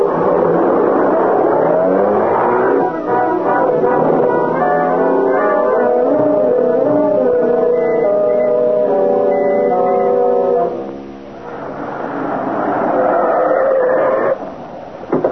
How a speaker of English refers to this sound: There's a car. Sheriff's car.